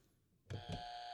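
A quiz buzzer sounds suddenly after a quiet moment, a bright electronic beep with a steady high tone and a second pulse, loud, holding to the end.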